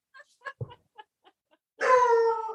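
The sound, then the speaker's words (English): A few faint, clipped yips give way to a loud, drawn-out woo-like howl from a dog, its pitch sliding slightly downward as it fades; no talking. “Yeah, and your dog agrees. My dog's like, woo!”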